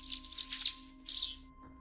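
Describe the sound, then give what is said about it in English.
A baby sparrow, taken from a nest inside a penitentiary, chirps in two quick bursts of thin, high-pitched peeping, the first longer and the second brief, with no talking. “This was a baby sparrow that had been taken from a nest inside the penitentiary.”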